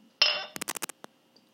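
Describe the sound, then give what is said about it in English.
A glass rings out with a bright clink, followed by a quick run of glugging bursts as a refill is poured into it, then a single last splash; no talking. “Hold on a second. I'm going to get refill.”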